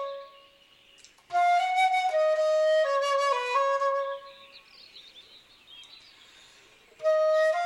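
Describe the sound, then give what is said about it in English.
A bird sings loudly in a bright, whistled burst of clear notes lasting a few seconds, then falls quiet before starting up again briefly at the end. “The bird's okay, I think. It is. It's happy.”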